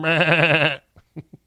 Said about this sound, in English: And the sound effects that Solly found of a YouTube channel of a bunch of goats in someone's pen was perfect and funny.